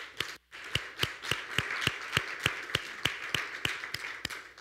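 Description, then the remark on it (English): An audience claps together in a steady, even rhythm after answering a preacher's call to give from God, sharp unified claps about three per second over a dense wash of scattered clapping, after a brief pause near the start. “Let's clap on that.”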